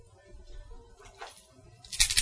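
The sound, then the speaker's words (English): Dice drop and clatter onto a table, a small rattle first, then a brighter, louder tumble of hard little knocks near the end, over a low background rumble. “Oh my god, oh, dice, right.”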